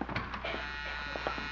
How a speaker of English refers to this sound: Got a buzzer on the door. Buzzer on the door. Let me write that down.